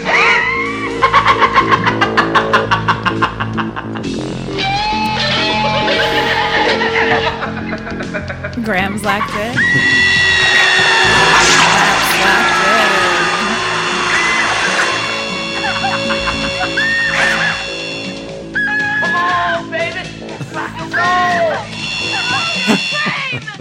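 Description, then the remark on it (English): The guitar drill, a custom weapon from the 1987 slasher sequel Slumber Party Massacre Part 2: harsh, buzzing electric whines and shrill sustained tones that rise and waver, mixed with screaming, maniacal laughter and brief voices, loud throughout. “That could be nothing other than the guitar drill from Slumber Party Massacre Part 2.”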